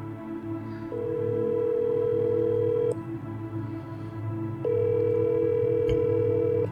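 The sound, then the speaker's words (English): A telephone ringback tone sounds twice as an iPhone calls a phone number, each steady electronic burr lasting about two seconds with a pause between, fairly loud over a low background hum, with no one talking. “I'd like to use my iPhone right now and try to call my childhood phone number.”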